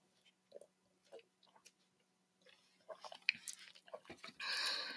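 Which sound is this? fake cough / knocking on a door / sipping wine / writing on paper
sipping wine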